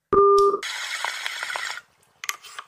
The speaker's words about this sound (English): Thank you for calling the Pop Smoking Moms hotline. Please leave your message after the beep.